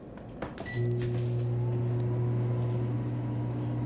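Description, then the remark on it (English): A microwave oven starts up after a few brief clicks and button beeps, then settles into a steady electrical hum that drones on without a break. “Microwave ASMR.”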